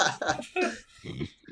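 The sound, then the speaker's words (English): A voice imitates a wet, hacking cough as if coughing up blood: four or five rough, gurgling bursts in quick succession, fairly loud, with no other talk. “I pretend to cough up a bit of blood with my negative, with my one hit point I took that whole battle.”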